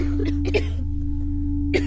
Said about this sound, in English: Yet the Unime have now all contracted the disease and are showing signs of it through a labored cough.